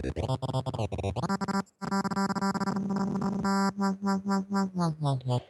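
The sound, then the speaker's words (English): A buzzy synthesizer tone chopped into rhythmic patterns by the rhythmic shapes of the filter LFO: first rapid stuttering pulses, then a sustained drone, then evenly spaced throbbing swells that slow and dip slightly in pitch toward the end. “And they got a couple of rhythmical ones there.”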